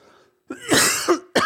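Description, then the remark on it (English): A harsh cough rasps out, then a gravelly throat clearing, and a second sharp cough cuts in right at the end. No one speaks. “I'm gonna be coughing.”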